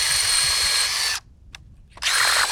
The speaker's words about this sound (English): he's hopeful when he bends down to drill a hole through the ice.